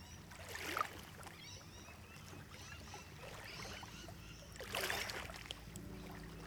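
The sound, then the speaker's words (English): Water gushes and flows steadily, swelling into two louder surging rushes, with a low rumble underneath and no voices. “Actually, it's gushing water. The river is flowing out of the TV, and now I'm surrounded I'm surrounded by an ocean.”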